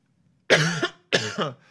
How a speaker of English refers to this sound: Coughing because I was screaming so much.